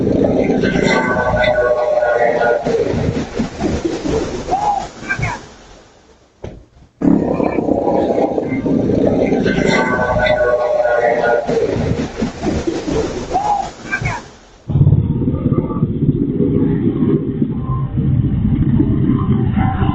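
A medical helicopter's loud, steady roar with a throbbing rumble as it loses altitude in a slight bank to the right before crashing, captured by a Ring doorbell camera, cutting out briefly, returning, then turning more muffled and narrower toward the end.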